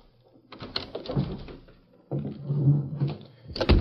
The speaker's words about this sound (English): Early the next morning, Red Bassett unlocked the door of the Clarion office.